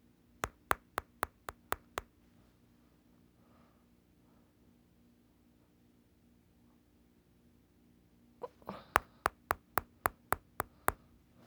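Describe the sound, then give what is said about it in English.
Knocking on a door in two sharp, rapid bursts: about six quick raps, a few seconds of quiet with a low steady hum, then a louder run of around eight raps. “They knocks on the door.”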